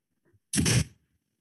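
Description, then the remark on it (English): A single sharp sneeze bursts out loud and breathy, preceded by a faint intake of breath, then quickly fades to silence. “I sneezed or laughed?”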